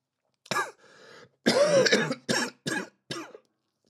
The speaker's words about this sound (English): I'm not taking these fucking coughs, by the way. Because this is part of the fucking experience.